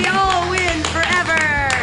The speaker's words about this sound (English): Like, well, don't sit there blank faced like you don't enjoy them. Clap your hands wild, everybody.